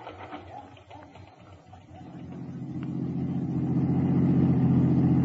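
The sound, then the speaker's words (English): A rented car's engine starts low and muffled, then revs up and grows steadily louder and rougher as the car accelerates and is driven, ending in a sustained engine drone. “In a rented car, I drove back to the Anderson address, parked across the street, and watched.”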